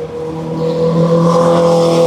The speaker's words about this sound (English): Ferrari going past and its exhaust was literally spewing flames. It stinks.